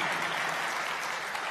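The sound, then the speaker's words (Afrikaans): A church audience applauding its worship leader together, a dense, steady wash of many hands clapping at once with no breaks, filling the whole moment at an even, moderately loud level. “Dit is vir ons lekker as gemeente om saam met jou en aanbidding te wees, dankie dat jy die span goed lei, en kan ons vir hom 'n lekker hande klap gee, kom ons begin daar.”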